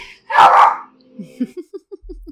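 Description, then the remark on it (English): A pet dog, Zuzu, lets out one loud bark, followed by a quick run of six or seven short, softer yips that fade in a steady rhythm. “It's a lot of dog noises today.”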